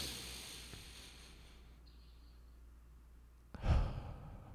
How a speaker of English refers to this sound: Literally breathe in, breathe out, and just settle my mind.